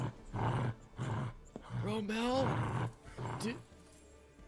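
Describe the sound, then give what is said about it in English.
A person imitates a dog's growl for the character Josh Pat, a few rough, throaty snarls rising and falling in pitch, loud, with a voice speaking briefly between them. “And he takes 2 steps before Josh Pat starts growling, I think.”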